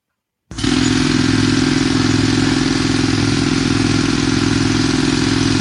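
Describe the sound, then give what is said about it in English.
A jackhammer or hammer drill kicks in abruptly and pounds steadily, a loud, rapid mechanical rattle with a droning low hum underneath, continuing unbroken to the end with no voices. “That's a jackhammer of some sort, or hammer drill.”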